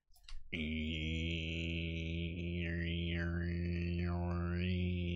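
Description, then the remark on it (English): A didgeridoo drone starts abruptly and holds a deep, steady buzzing fundamental with rich overtones, while a higher resonant band wobbles and sweeps up and down. Loud and continuous, with no talking. “Didgeridoo.”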